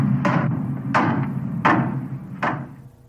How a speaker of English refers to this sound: Bring a hammer and some spikes. Hit that in, will you?